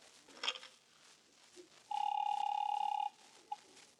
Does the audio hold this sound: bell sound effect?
no